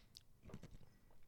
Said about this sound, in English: I'm sorry if I just crunched ice into the microphone.